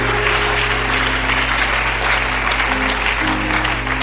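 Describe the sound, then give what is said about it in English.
A crowd applauds steadily, a dense wash of many hands clapping without pause, loud and continuous for the whole stretch, with a low steady hum running underneath. “Increase that clap often because wisdom is being downloaded.”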